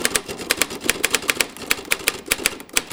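Brisk typing on a Royal Standard manual typewriter, crisp: a steady stream of sharp mechanical key strikes at an uneven rhythm, each clack ringing bright, with no voices.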